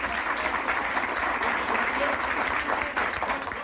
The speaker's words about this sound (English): Applause ringing in his ears